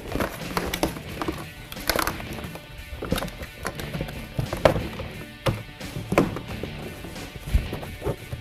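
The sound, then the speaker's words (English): Solid thumps and knocks land at irregular intervals as a car door panel is pounded back on after a new speaker is installed, seating its tree clips into the door, with faint rustling between hits. “Make sure you pound all those tree clips back down into the door.”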